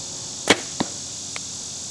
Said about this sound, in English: I'm going to shoot that little buck target right there. Don't split my arrows.